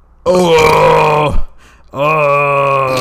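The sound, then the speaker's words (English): A loud, drawn-out burp rumbles, followed after a short pause by a second long, deep burp, with no talking over them. “Manly fucking burp right there.”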